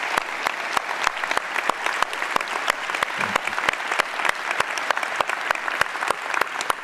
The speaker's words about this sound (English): And can we give these folks a round of applause for all of it? Thank you so much.